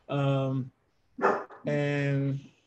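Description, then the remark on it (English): A dog barks in three vocal bursts: a drawn-out, tonal bark, a short rough yelp, then another long, howl-like bark, with brief silences in between. “Dogs are cool.”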